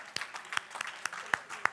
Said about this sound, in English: Come on, keep clapping until she gets to the stage. We want to prevent that awkward moment.